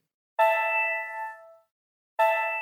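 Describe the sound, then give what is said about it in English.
The Minutes to Go timer app plays its completion chime when the timer goes off: a bright, bell-like electronic chime with a sharp attack and a shimmering tone that fades over about a second, then strikes again, with no voices present. “So we have about 5 seconds left, and here's what it sounds like when the timer goes off.”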